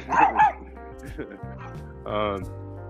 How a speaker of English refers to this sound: Here's that dog again.